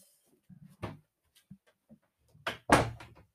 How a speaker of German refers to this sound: Ich möchte jetzt diese Tür hier zumachen.